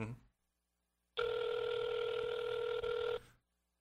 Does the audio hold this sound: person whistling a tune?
no